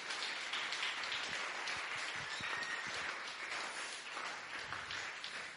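A room full of people applauds a speaker steadily, dense overlapping claps forming a continuous wash of sound that holds at an even level for several seconds.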